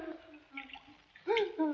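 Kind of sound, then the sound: bird, parrot squawking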